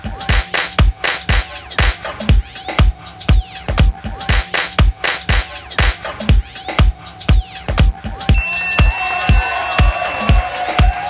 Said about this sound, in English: Rhythm 2. I clap, you clap. Awesome. Rhythm 3. I clap, you clap.